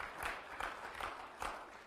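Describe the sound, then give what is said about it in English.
A church audience applauding during a service, a dense wash of many hands clapping, swelling in rhythmic pulses about every half second for a couple of seconds. “I don't have you clap because most of you are late.”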